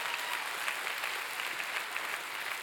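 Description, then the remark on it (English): A crowd applauds the mothers, many hands clapping in a dense, continuous patter of bright crackling claps that holds an even loudness throughout, with no voices standing out. “Come on, can we clap our hands for mama?”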